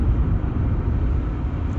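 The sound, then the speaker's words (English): A steady, loud low-frequency rumble fills the inside of a moving car, with constant road and engine noise and no breaks or voices throughout. “I'm just getting a feel for talking while I'm driving.”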